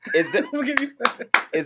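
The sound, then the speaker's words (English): Several sharp hand claps, about four, spaced unevenly and mixed in with overlapping voices and laughter-like vocal sounds. “I'm going to give you claps for that.”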